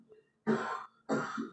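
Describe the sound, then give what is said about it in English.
A person coughs twice, fairly loud, two harsh bursts separated by a brief pause, with no talking around them. “I told you I started touching on me and coughing on me.”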